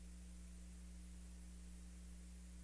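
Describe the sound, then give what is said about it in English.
A steady, low air conditioner hum, a constant drone with a soft hiss over it, unchanging throughout with no voices or other sounds. “Oh, it's quiet. I can hear the air conditioner stuck in the air.”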